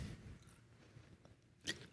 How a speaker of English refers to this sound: So let me get a drink of water here.